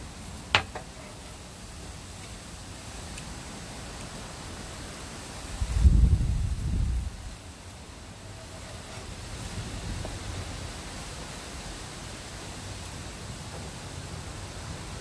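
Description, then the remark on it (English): Steady wind hiss with a couple of low, rumbling gusts buffeting the microphone, the strongest surging about midway through before easing back to a constant breezy rush. No one speaks. “I didn't realize it was supposed to be this windy today.”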